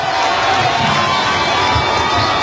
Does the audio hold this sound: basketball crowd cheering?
yes